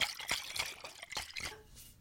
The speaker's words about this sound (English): is pouring that Prosecco that she ain't paid for.